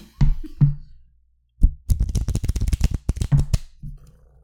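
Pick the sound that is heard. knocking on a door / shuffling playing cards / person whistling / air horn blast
shuffling playing cards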